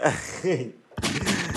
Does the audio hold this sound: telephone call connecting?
no